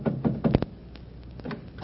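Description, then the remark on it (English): Heavy fists pounding on the door of the Sutherland plantation house to rouse the foreman: a quick burst of loud, dull thuds, then a few scattered, softer knocks, with no voices. “after considerable pounding on the door, succeeds in arousing the foreman who owns the elephant”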